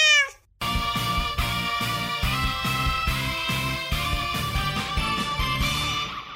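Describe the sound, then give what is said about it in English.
A single short, clear cat meow opens, then cuts off as upbeat music with a steady pulsing bass beat starts and carries on to the end. “Predator and Prey, bookings are filling up fast, so call right meow.”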